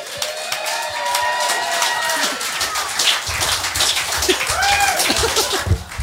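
A crowd applauds steadily, dense clapping running the whole time, with scattered cheers and a few rising whistle-like calls over the top, as the Mayor of Ballarat is welcomed onto the stage.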